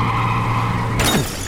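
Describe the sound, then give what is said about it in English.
A steady engine drone runs until a sudden, loud crash with bright glass shattering cuts in near the end, followed by a brief scraping sweep as the noise settles. “Can we now please stop crashing my car?”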